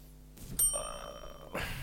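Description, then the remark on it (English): A single bright bell strike rings out with a sharp attack, its clear high overtones sustaining for about a second before a burst of noise cuts it off. “Get off my bell.”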